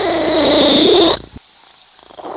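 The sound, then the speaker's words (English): A loud cat purr rumbles steadily for about a second, then cuts off abruptly, leaving quiet with faint background noise. “The more I listen to that purring cat, listen to that again.”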